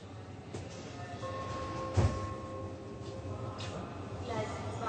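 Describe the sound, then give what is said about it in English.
A passenger train bound for Berlin pulls away from a platform at Cologne main station: a steady low rumble, a thin metallic whine, and a sharp clunk partway through, with indistinct voices murmuring in the background. “They get on the train for Berlin.”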